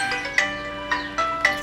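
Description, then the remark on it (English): A phone ringtone, set off by keys being sat on, plays alone, a steady electronic melody of bright, high tones with short accented notes repeating roughly every half second at moderate volume. “Oh, and so they're making your phone ring.”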